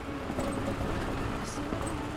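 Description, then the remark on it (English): A steady, loud rumble of a convoy of roughly 15 4x4 cars driving up to a lake, carrying lawyers, experts and German judges, with constant low engine and road noise and a few faint high chirps over the top. “I'm currently in the midst of a convoy of roughly 15 4x4 cars.”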